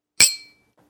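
A single bright clink of two beer glasses, holding Blizzard of Hops IPA and Flying Fish beer, touching in a toast, fairly loud, with a short ringing tone that fades quickly into quiet.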